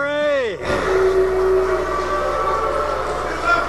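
A brief falling tone gives way to a crowd booing loudly, a dense, sustained roar of many voices that holds steady for about three seconds without letting up: the reception for former Vice President Mike Pence at the National Rifle Association's Leadership Summit.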